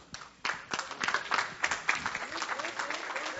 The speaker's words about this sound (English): Whatever you clap for man, you better clap double for Jesus at least.